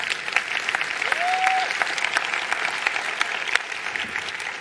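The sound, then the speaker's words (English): An audience applauds steadily as a clap offering to God for several seconds, a dense wash of many hands clapping at an even, sustained level, with a brief high whistle-like tone rising above it early on. “Can we give God a clap offering also?”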